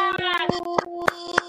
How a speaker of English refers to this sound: In the audience, let's start getting those claps.